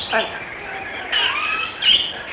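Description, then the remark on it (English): Two pet lovebirds chirp in a few quick, high bursts, with short warbling tweets separated by brief pauses over faint background noise. “And these birds of yours don't?”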